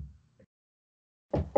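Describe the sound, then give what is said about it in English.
Two quick, fairly loud knocks, like knuckles rapping on wood, land close together after a moment of silence, preceded by a faint low rumble. “And now I have no pain and it has not acted up on me since. Knock on wood.”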